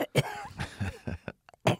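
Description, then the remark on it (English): A person imitates a harsh, hacking tubercular cough: a rapid string of rough, wet coughs and throat-rasping bursts, fairly loud, ending with a final heavy hack. “He coughed up a lung with TB. He had that Wyatt Earp tombstone cough.”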